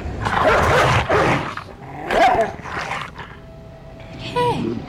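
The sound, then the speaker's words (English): A dog snarls and barks aggressively, several harsh, rough bursts in a row, ending with a higher whining yip. There is no talking. “A demon dog from hell. That sounds like a T-Rex with glowing red eyes, letting you know that he's possessed.”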